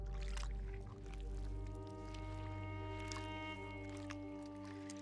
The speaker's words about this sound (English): A mud pot is exactly how it sounds. It's a pool of bubbling mud, a hot spring. Its formal name is the Nyland Geyser. This mud pot looks like it's boiling, roiling brown water.